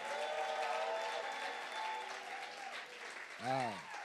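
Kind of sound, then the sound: crowd, audience hand clapping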